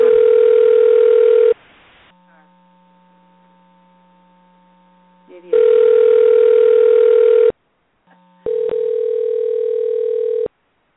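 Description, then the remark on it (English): A loud, steady electronic phone tone blares in long bursts, cutting in and out three times with quieter humming gaps between, like a dropped call's dial tone. “Hey, it seems to be having some phone issues.”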